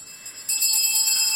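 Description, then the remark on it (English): A bell rung by a man upstairs rings on continuously, a bright, high metallic tone that is faint at first and then grows loud and steady after half a second. No one speaks over it. “Why does it keep ringing?”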